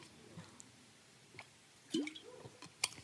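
A person takes a quiet sip of water, with soft wet mouth clicks and a single swallow-like gulp near the end, followed by a faint click.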